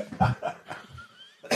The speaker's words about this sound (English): Oh, God. Made myself cough.